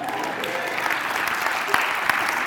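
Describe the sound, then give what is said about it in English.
Steady, dense applause from an audience for a performer who has just played two chords on the piano, a continuous wash of many hands clapping at an even, fairly loud level for a couple of seconds, with a few sharper individual claps popping out. “That was a generous applause you just got.”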